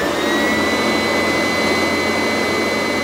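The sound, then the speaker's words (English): A vacuum cleaner runs continuously in a room with the door shut, a loud, steady roar with a high whining hum layered on top, no voices present. “In truth, I was really running the vacuum cleaner.”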